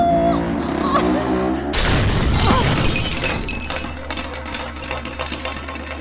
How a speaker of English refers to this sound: Sorry. Dropped the automobile.